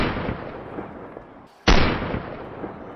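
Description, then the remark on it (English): A meat and cheese cannon on a float fires a loud blast that booms out after a brief gap, its rumble slowly fading; the opening moments are filled with the roaring tail of an earlier shot. No one speaks. “People of Bison Crest, if you can hear me, open your mouths and open your hearts, or I will shoot this meat and cheese cannon in your face.”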